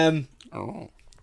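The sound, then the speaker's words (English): A short cough bursts out once, rough and breathy, just after a brief voiced sound from the same person; no words are spoken. “Sorry, a little cough then.”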